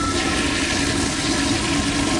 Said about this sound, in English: tiptoe out of bed into the bathroom to flush the tissues down the toilet